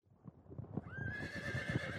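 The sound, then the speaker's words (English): A horse lets out a long, high whinny over steady clip-clopping hooves, the neigh rising and holding as the hoofbeats thud along beneath it. “They must have remounted.”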